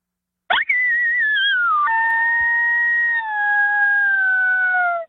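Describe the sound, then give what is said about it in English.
A sustained, wavering howl blown on a predator call, starting with a sharp onset then holding a long, slowly falling tone for several seconds, loud with no talking. “give it a howl, man. Can you give me a howl?”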